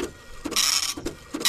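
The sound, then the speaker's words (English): Dot matrix printer effect: rapid, rasping bursts of high buzzing chatter, repeating in a stop-start rhythm with brief pauses between passes, fairly loud and with no voices. “The dot matrix pincher.”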